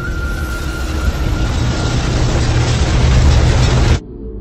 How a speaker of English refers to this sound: And then a bang, a crack, the calamitous shatter of breaking concrete. The road yaws wildly to the side. The suspender cables snap one by one. And then, with a deep, thunderous groan, the bridge tears itself in half.